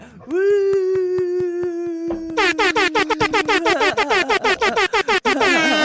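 A loud air horn blares in one long steady note, then breaks into a rapid stuttering string of short, piercing horn blasts that keep going to the end, with no voices.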